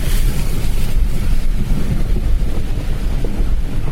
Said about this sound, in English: I think maybe I came in there a bit fast. The big brown muddy splashes all around me. I think I'm probably going to have to close the windows, otherwise I'm going to get absolutely slithergulated.